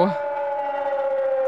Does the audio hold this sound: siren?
yes